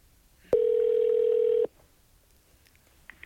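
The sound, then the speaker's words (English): A long-distance telephone call to the Cincinnati Zoo Cat Ambassador Program connecting: one loud, steady, mid-pitched ring tone lasts about a second, then stops, leaving near-silence with a few faint clicks. “Please stay on the line while your call is completed.”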